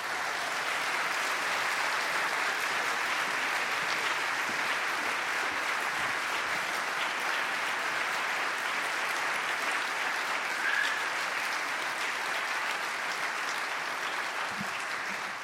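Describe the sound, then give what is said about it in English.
Sustained town hall audience applause welcoming Sebastian Junger and Patricia Murphy, a dense steady wash of many hands clapping at even loudness for about fifteen seconds, with no talking over it. “And so at this time, please join me in giving a warm town hall welcome to Sebastian Junger and Patricia Murphy.”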